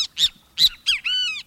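A Great Kiskadee calls loudly: three harsh, buzzy notes in quick succession, then a longer ringing note with layered harmonics, all with no talking.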